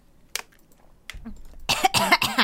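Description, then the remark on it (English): A person coughs after choking on water: a couple of short, sharp coughs, then a louder, harsh run of rapid hacking coughs toward the end, with no talking. “Choked on water.”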